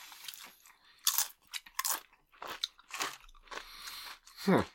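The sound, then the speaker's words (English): Loud crunching of Flamin' Hot Doritos tortilla chips being chewed, with about seven or eight sharp, irregular bites over a few seconds. There is no speech. “I think it's because we've been munching on all these Flamin' Hot ones.”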